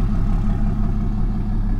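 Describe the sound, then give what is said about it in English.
A heavy truck drives past, its engine a deep, steady, loud rumbling drone with a faint clattering edge that holds for the whole moment without fading. “Excuse you, truck. That is rude.”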